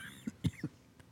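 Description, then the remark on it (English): A short run of three quick, muffled coughs from the speaker in close succession, fairly quiet, followed by a faint catch of breath; no one speaks. “Everybody got nervous when I coughed there.”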